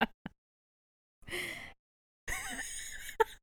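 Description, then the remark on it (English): A neighbor's loud sneeze heard through a wall follows a short, breathy intake: two forceful, airy bursts separated by a brief pause, with a couple of small clicks before and after and no talking. “My neighbor is sneezing really loudly.”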